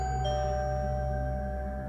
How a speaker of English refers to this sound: And then the doorbell rang.